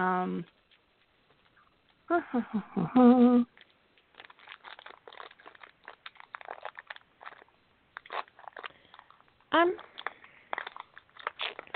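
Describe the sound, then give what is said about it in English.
A granola bar wrapper is crinkled open in a long run of irregular, rustling crackles, with a few short bursts of a voice at the start and again later. “I'm not chewing anything. I'm opening up a granola bar, though.”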